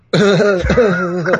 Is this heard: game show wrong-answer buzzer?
no